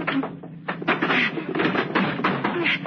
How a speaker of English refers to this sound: Let's push this table against the door. Come on. Okay.